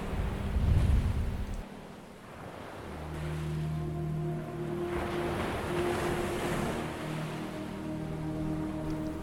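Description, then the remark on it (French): Ocean waves roll in and recede in a slow, continuous wash of surf, with a low steady hum running underneath and no voices. “Les vagues s'avancent vers vous et se retirent lentement.”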